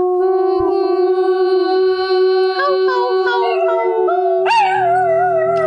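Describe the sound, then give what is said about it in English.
A dog named Bob howls in one long, sustained, wavering note, loud, with the pitch lifting sharply near the end before settling back. No one speaks. “Oh, I was going to make Bob howl, but.”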